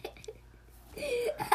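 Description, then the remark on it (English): A person coughs: a few small throaty bursts at first, then a louder, raspy cough that trails off near the end. “Can you please stop coughing on me?”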